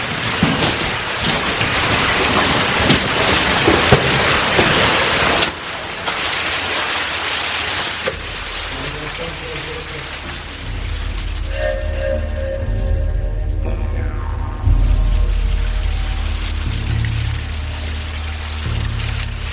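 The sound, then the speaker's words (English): Steady rushing water of a feeder stream pours and splashes continuously, loud, with a deep rumbling undertone that grows heavier partway through, as the stream tumbles through an underground cave streamway. “So we're going down the streamway here.”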